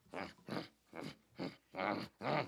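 A dog growls in six short, evenly spaced bursts, each a rough, throaty snarl, moderately loud, with no voices.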